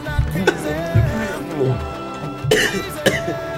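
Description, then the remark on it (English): Several harsh coughs burst out in uneven bursts, mixed with rough throat clearing, while music with sustained tones plays steadily underneath. “I think that cough just hurt my prostate.”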